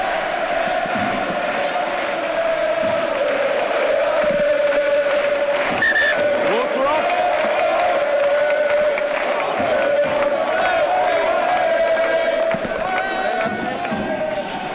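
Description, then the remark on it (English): A huge home crowd at a rugby stadium sings together in a loud, sustained chant, thousands of voices blending into one steady drone that carries on without a break, with a general roar around it. “Listen to the home crowd. They're absolutely brilliant. They're singing since 12 o'clock this afternoon.”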